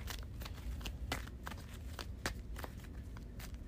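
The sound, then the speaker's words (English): A deck of cards being shuffled, a run of soft, crisp papery snaps and flicks repeating irregularly for a few seconds, fairly quiet, with no one talking. “I'm going to shuffle.”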